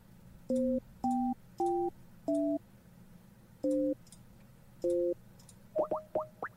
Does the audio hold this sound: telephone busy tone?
yes